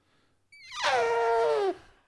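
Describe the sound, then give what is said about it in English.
A person imitates an elephant's trumpet with one loud, brassy blast lasting just over a second. The pitch starts high, swoops down and holds before cutting off. No one speaks. “Try to do an elephant noise.”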